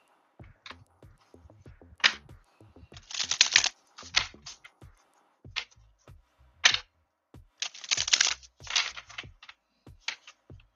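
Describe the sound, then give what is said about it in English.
Tarot cards being shuffled for a reading, with quick papery riffles and crisp snapping clicks in irregular bursts, a few longer rustling runs between short pauses, and no voices. “Let's shuffle up a few times.”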